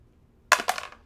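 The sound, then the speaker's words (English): Dice, including a six-sided die being re-rolled, clatter onto a hard surface in a quick burst of sharp clicks, two strong hits followed by smaller rattling bounces that fade out within about half a second, fairly loud. “I actually am going to force him to re-roll.”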